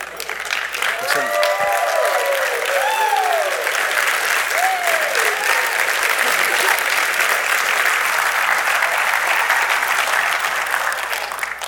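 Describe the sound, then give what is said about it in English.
A large audience, asked to stand up and make some noise, applauds steadily for about ten seconds, dense clapping with a few cheers and whoops rising above it early on. “I wasn't looking for applause.”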